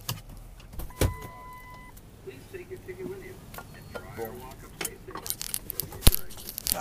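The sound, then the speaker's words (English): Inside a car in frigid weather, with the windows frozen shut, a sharp latch clunk and a brief motor whine, then rustling, cracking and scraping as a door is forced open, ending in a loud thud. “I couldn't put the windows down. Yep, windows frozen. I gotta get, I gotta open the door for this thing.”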